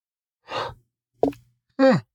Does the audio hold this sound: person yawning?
yes